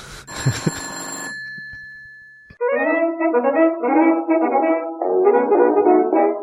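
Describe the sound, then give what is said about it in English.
An old-fashioned telephone bell rings in a brief, loud burst that trails off into silence, and after a pause a bright, tuneful melody begins. “Phone, stop ringing.”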